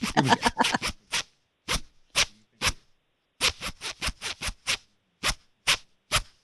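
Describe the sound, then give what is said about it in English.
A trouser fly zipper is run up and down again and again with a microphone held down at the crotch, loud: a quick flurry of rasping strokes, then slower, evenly spaced zips with short pauses between. “Now, let's Scary zip that hit one more time.”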